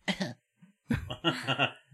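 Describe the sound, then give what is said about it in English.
A person coughs: one short harsh burst, a brief pause, then a longer, strained run of several raspy coughs in quick succession. “You can cough, man.”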